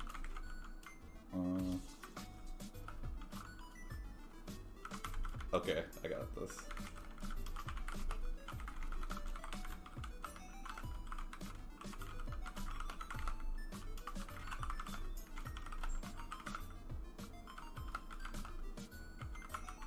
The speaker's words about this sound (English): Now you've been typing a lot.